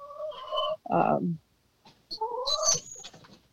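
Backyard poultry call out as they are being locked up: a few loud, harmonic squawks and clucks in short bursts, separated by a brief quiet gap, with faint rustling underneath.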